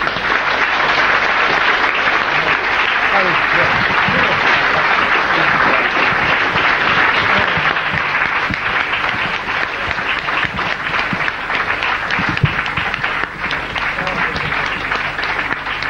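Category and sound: crowd, audience applause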